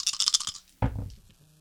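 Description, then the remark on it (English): Dice rattle in a quick burst of clicks, then clatter onto a table with a sharp knock and a brief tumbling roll that settles quickly, as a player rerolls all their dice in a tabletop game. Fairly loud, with no talking. “You can reroll everything or roll one additional die and keep one additional die. I'm going to reroll everything.”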